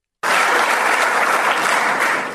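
An audience bursts into steady, loud applause after a brief silence, clapping for remarks on de-dollarization and settling African trade in local currency, the dense clapping holding at an even level for about two seconds with no voices rising above it.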